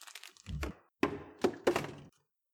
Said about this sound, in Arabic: الفراولة التي رمتها أروى خارج الكيس وقعت على الأرض.